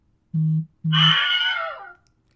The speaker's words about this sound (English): So to go ahead and wrap things up and give y'all actual proof, Connie, can you go ahead and give them their last Wilhelm Scream by sending me a text?